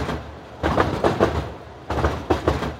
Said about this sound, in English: Sometimes I find myself nodding along to like the rhythmic hum of the Uptown C train. And I'm like, is this music?